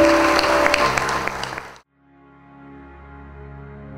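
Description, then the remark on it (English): An audience claps their hands in praise in a loud, dense burst with a sustained tone underneath, lasting under two seconds before cutting off abruptly into soft, steady held notes. “Come on and give him a hand clap of praise in this house.”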